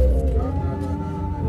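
A sustained chord held on an electronic keyboard, a steady, warm low-to-mid drone with layered tones that ring unchanged at moderate volume throughout, with no talking over it.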